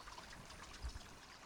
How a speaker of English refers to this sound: I'm in Joaquin Miller Park in Oakland, California. The Palos Colorados trailhead is empty when I arrive. It's been raining for a few days, so the creek that the trail snakes along is in full force.